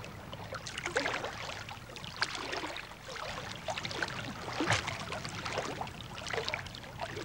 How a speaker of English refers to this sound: Swimming along here, the water's quite warm. It's very pleasant, but I've just put my feet down into some gelatinous gunk. It feels horrible.